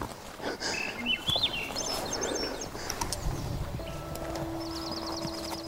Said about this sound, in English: Having the birds sing.